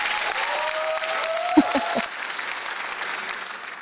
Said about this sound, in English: Audience, a big round of applause for a grassroots growing, common sense cap wearing, everyone engaging, masses motivating, community collaborating, freedom fighting, country loving, people inspiring, passionate, patriot, and leading lady of liberty.